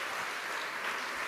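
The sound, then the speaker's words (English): Steady, dense audience applause for a band led by band leader Daryl Terrell fills the whole moment, a crowd clapping continuously at an even level with no voices breaking through. “One more big round of applause for this band led by band leader Daryl Terrell.”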